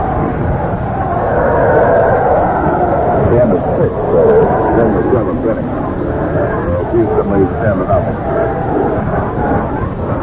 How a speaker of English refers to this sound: That's like the reaction from the crowd